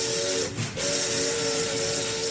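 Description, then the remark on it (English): A loud steam train whistle sounds with a steady harmonic tone, briefly broken, over a constant bright hiss of escaping steam, continuous. “Truman got on his train, went whistle-stopping through.”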